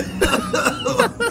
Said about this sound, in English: That ringlet of like dust that like sparks out from him just exactly, like makes … cough.